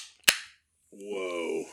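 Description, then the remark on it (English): A slim soda can cracks open with a sharp, loud pop, followed by a brief fizzing spray that fades within a quarter second. A drawn-out voiced exclamation follows after a short pause. “Let's get the real pop ski in here.”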